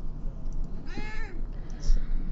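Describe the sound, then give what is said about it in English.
A single cat meow for attention, drawn out for about half a second with a rising then falling pitch, over a low, steady background hum. “Oh, the cat's back.”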